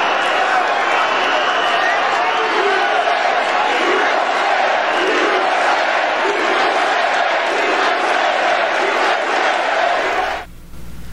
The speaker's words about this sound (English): you got Trump's crowd shouting, USA, USA